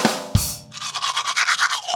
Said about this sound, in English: And the second, after you eat, is brushing the gunk off your teeth.